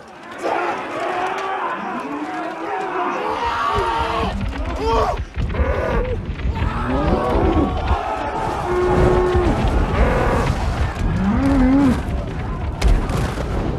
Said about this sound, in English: Don't they do it in Greece or is it Italy? The running of the bulls. Running the bulls, yeah.